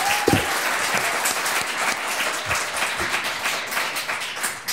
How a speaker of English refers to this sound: And now, ladies and gentlemen, please can we give a round of applause to Rabbi Daniel Rowe for his opening statements.